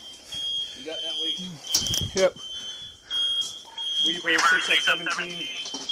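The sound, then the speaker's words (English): Several smoke alarms shriek with a steady, piercing high-pitched tone at a house fire with thick black smoke pouring out, while people talk over them and there are some brief bumps and movement noises. “Multiple alarms going off.”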